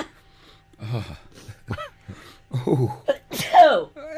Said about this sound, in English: Sorry, it always makes me sneeze.